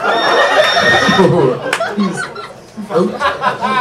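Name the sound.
horse neigh sound effect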